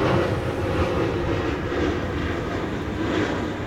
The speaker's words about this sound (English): This, just to describe it, like, this is not a place for monkeys. There's planes going, like, nonstop.